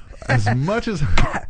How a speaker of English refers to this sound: I'm trying to do that over your cough.